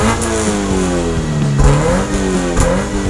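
A car engine revs loudly, its pitch climbing and dipping in a few surges over a steady mechanical rumble, with no voices present.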